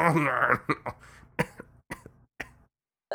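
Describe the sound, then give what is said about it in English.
A strong, rough cough from a person with a cold opens, followed by a run of sharp, separate coughs and throat-clearing bursts spaced irregularly over a few seconds, with silence between them. “Good, I'm glad you coughed.”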